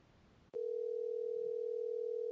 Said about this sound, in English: I hear ringing.